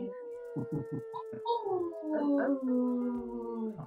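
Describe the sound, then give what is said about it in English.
A long, wavering wolf howl glides slowly downward in pitch over several seconds, preceded by a few short yipping calls, moderately loud. “go ahead, make some noise, add in a wolf howl.”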